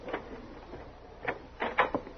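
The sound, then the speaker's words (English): A front door is unlocked and opened: a metallic click, a pause, then a quick cluster of rattling knocks and clacks as the latch and door move. No one speaks. “Stop talking so much and open the door.”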